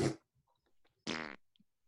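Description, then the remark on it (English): Two loud, buzzy mouth-made fart noises from different voices, the first short and the second longer and rattling, with faint scattered sputters between them. “Everyone do their fart noise.”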